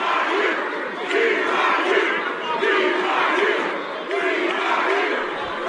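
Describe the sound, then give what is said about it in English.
A loud crowd of BYU fans cheers continuously in Jadwin Gymnasium during a BYU–Princeton basketball game, Cougars leading 48–43 with 6:39 to play, a dense roar of many voices with rhythmic, chant-like surges repeating about once a second for nearly six seconds. “Listen to the BYU crowd here in Jadwin Gymnasium.”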